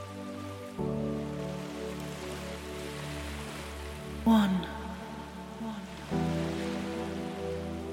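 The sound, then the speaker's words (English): A steady wash of ocean waves hisses continuously beneath a low, sustained musical drone, with a single brief spoken word partway through. “So just listen to the sounds of the beautiful, deep blue ocean and rest.”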